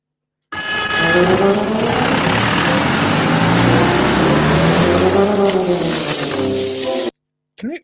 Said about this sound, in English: Am I the only one that hears a jackhammer going in the background?